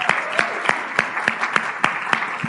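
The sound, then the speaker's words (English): An audience applauds warmly to welcome a speaker, a dense wash of clapping with sharp, evenly spaced claps cutting through in a steady rhythm. It stays loud and consistent throughout, with no talking. “And so would you please warmly welcome the best man I know”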